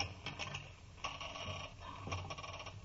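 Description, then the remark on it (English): A rusty door lock grinds and clicks as it is turned open, with scraping metallic ratchets and a few sharper clacks over about three seconds, moderately loud with no voices. “Confound it, this lock must be rusty. No, here it comes. Blast it, did it have to make that noise?”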